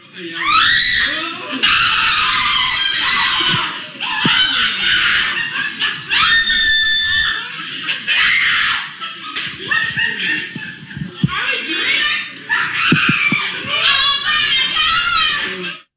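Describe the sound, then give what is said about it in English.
Excited, high-pitched screaming from several people, including children, continuing nearly nonstop with bursts of squealing, laughter and a few sharp smacks or claps, as a family is reunited with their father, who surprises them. “I know it's just a lot of screaming and stuff, but it was sort of just one of those nice moments”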